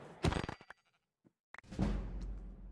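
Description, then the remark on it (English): Two short, nasal sheep bleats from a video game, fairly loud, separated by a brief silence with a faint soft thud between them; a pink sheep found in the wild right behind the player. “Oh wow, there's one right behind me, what are the chances?”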